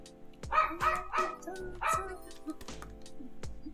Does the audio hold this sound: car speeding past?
no